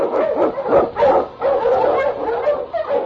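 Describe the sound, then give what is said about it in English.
Husky sled dogs, led by the dog King, bark and yip in a dense, overlapping chorus while blazing the trail through storm and snow in The Challenge of the Yukon; loud, with steady rapid barks filling the full three seconds and no pauses. “The Wonder Dog King, swiftest and strongest of Eskimo League dogs, blazes the trail through storm and snow for Sergeant Easton as he meets...”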